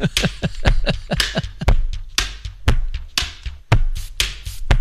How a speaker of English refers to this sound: Oh, slapping Tupperware lids together.